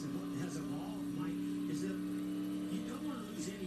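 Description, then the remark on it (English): Race cars pulling off pit road, their engines droning in a steady, loud, continuous hum with faint rising and falling whines from passing cars. “Cars working their way off pit road.”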